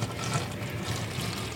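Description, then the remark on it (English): A steady stream of milk pours and splashes into a sink drain in Montana, a continuous gurgling wash of sound at even loudness with no voices. “In Montana, a sell-by date is a throw-away-by date or a pour-down-the-drain date.”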